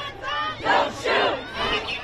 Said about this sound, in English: protesters flooded the streets in what's become a sad, angry, and familiar ritual. They chanted, they marched, they yelled at the cops, they held up signs reading Black Lives Matter.